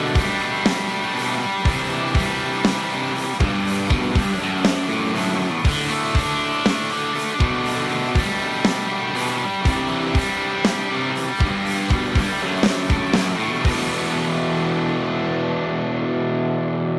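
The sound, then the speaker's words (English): A heavily distorted electric guitar, played through a distortion pedal for a demo recording, plays loud, crunchy chords and riffs with sharp, rhythmic picking attacks, dense, with no talking; the bright fizz tapers off near the end. “Anyway, so I recorded a demo because I said I was going to start doing that again if it was just a distortion because that's boring.”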